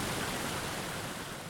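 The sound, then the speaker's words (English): Steady, even rush of falling water from a 3-foot artificial waterfall in the middle of a river otter enclosure, a dense hiss of white noise that holds constant throughout the short stretch with no voices. “river otters, at least, have a 3-foot waterfall right in the middle of their enclosure.”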